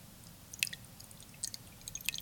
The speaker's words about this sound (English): He wasn't peeing. He was pouring water. But you guys should want to go pee right now from that ASMR that he just put on.